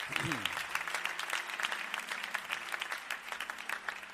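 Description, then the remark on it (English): A church audience breaks into steady applause for the pastors and evangelists standing across the church, many hands clapping in a dense, sustained patter that stays fairly even throughout, with a brief low tone at the start. “Let's give our ministering brethren a hand clap tonight.”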